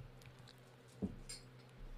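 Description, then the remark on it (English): A shot glass is set down on a hard table with a single clear knock, followed shortly by a lighter clink, with no talking in the background. “Do you want another shot glass so you can just line them up?”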